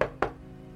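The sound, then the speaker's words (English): Two firm knocks on a weathered wooden door of a house on a bit of land by a bay, evenly spaced, a moment apart, then only a low steady hum in the background. “I could hear the waves beating against the rocks below as I walked up the path and knocked on the weather-beaten door.”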